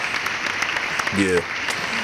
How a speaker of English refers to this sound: You gotta big up Nick Cannon. You gotta fucking applaud that man.